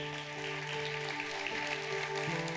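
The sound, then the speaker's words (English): A crowd claps in a steady, diffuse patter throughout while adoptive parents and adopted people stand, with a sustained low musical tone holding underneath the applause. “There's a reason why I have you stand. Not just so people applaud.”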